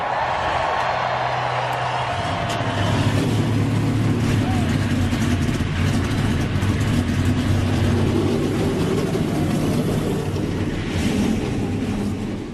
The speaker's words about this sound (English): It's time for the most famous words in motorsport. Drivers, start your engines!